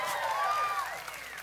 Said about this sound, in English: If you believe that, give Jesus a shout and a hand clap.